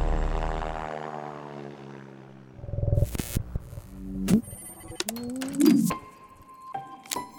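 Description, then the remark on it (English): A small old propeller plane flies into a thunderstorm, droning with a steady, buzzing engine hum that slowly drops in pitch, then gives way to a jumble of sharper clatters and whooshing sounds. “And obviously, my first question after listening to that is, why is this guy flying an old tiny plane straight into a thunderstorm?”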